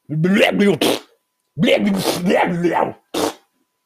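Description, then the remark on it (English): A person imitates a Tasmanian devil with loud bursts of raspy growling and harsh screeching, three outbursts separated by short pauses. “Let's just do Tasmanian Devil.”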